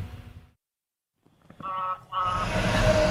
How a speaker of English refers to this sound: Semi drove by.